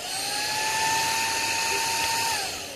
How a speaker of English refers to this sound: That was Jonathan having a vacuum near him.